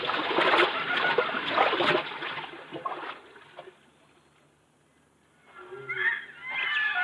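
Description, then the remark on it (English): Water sloshes and splashes steadily for a few seconds as people wade on foot across a river no deeper than their hips, then fades into near quiet before brief tonal calls rise at the end. “We can cross the river here, Buona.”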